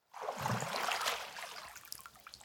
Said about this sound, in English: The bath has filled up with enough water, so it's time for Tom's dad to turn off the tap.